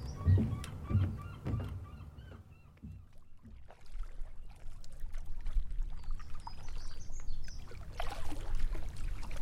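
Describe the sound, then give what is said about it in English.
Kayak paddles dip and splash through calm salt water in a mangrove channel in steady strokes, with gentle trickling and dripping between them, while birds call faintly in the background. “Once we're in our kayaks, Hassan leads the way down one of the mangrove channels.”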